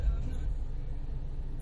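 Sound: car interior noise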